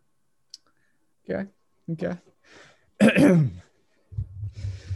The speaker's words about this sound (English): Okay. So let me clear my throat real quick.